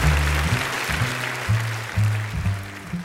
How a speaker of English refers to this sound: And can everybody give a big round of applause?